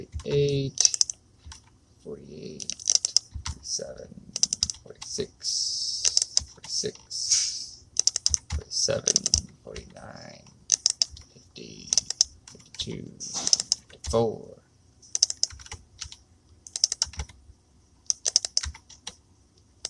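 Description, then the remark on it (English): Rapid, irregular clicking of computer keyboard keys, fairly loud, in quick bursts with short pauses, continuing throughout with a faint low hum underneath. “You can hear me clicking.”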